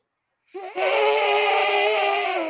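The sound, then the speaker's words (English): A person imitates an elephant's trumpet with a loud, brassy, sustained blare. A short rising start leads into a bright, buzzy call that holds steady for about two seconds, alone with no talking. “Can y'all make an elephant sound?”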